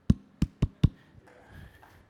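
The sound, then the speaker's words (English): Four sharp hand claps in a quick rhythmic pattern, a clap used by teachers to get a classroom of young children to stop and copy it, a longer gap after the first and then three evenly spaced claps, followed by a faint low murmur. “But if it's chaos, they'll all of a sudden do that magical clap.”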